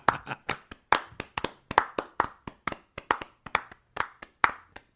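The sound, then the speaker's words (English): A small group clapping politely, with sharp, evenly spaced hand claps that overlap a little. The clapping is steady and moderate in volume, and nobody speaks over it. “Helmets off, bat in the air, polite applause.”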